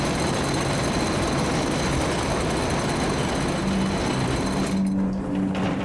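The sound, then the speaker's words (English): A rattling elevator ride: a steady, loud mechanical rumble with constant clattering and a low droning hum underneath, lasting the whole clip with no voices. “This thing rattles a lot.”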